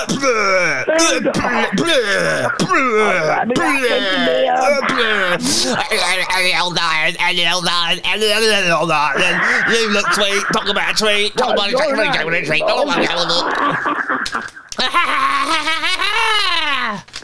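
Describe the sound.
A voice doing an impression of another person's heavy breathing, with loud, exaggerated, rhythmic huffs and groaning gasps that slide into wavering, laugh-like moans, sustained for most of the stretch.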